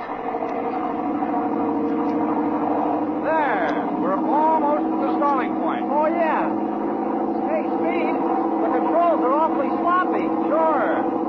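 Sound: airplane engine droning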